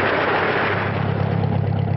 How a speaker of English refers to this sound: The returning party takes their baggage to two cars outside the station. Later, the cars travel along a winding road.